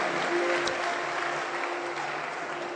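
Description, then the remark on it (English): A church audience of leaders, pastors and brethren applauds themselves for coming, a steady round of dense overlapping clapping that holds at a fairly even loudness throughout, with a faint sustained tone humming underneath. “Let's give ourselves a round of applause for coming all the way.”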